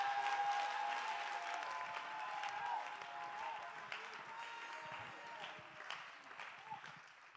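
An audience claps and cheers steadily for several seconds, giving praise to God, a dense wash of applause with scattered shouts and whistles rising over it, loud throughout.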